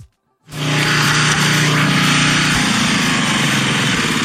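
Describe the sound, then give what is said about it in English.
A small engine kicks in after a brief silence and runs at a steady, loud drone, the throaty hum of a ride-on lawnmower ridden in Australia by a drunk 51-year-old man at about 1 a.m., with no voices. “An Australian man was caught allegedly riding his lawnmower drunk to his daughter's house in the middle of the night.”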